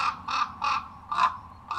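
Common raven calls: a run of about five harsh, raspy caws in a fairly steady rhythm, each short and croaking, moderately loud over a low background rumble, with no voices.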